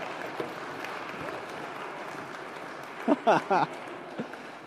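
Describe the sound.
An audience applauds after a Bible reading from Nehemiah, with steady, dense clapping for several seconds, and near the end a few short, high voices whoop and call out over it.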